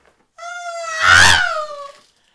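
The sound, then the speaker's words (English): A voice imitates a grandmother screaming while riding the Hulk rollercoaster: a single long, high-pitched, wavering wail that swells to a loud, harsh peak midway, then slowly fades out. “My gran was going by screaming the whole way around, and you could, I am so sorry if you've got headphones on, by the way, because I've literally just looked at what I'm recording and it just went green, green, green, red, green.”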